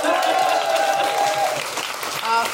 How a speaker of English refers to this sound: Ladies and gentlemen, a big round of applause